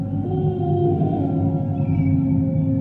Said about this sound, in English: but through the thick fog away to the south, he starts to hear a series of unnatural howls.